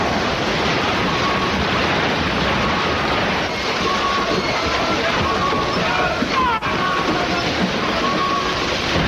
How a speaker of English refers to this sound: We've struck something, Mr. Murdoch. An iceberg, sir.